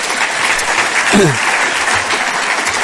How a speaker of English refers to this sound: Let's give him a quick little round of applause.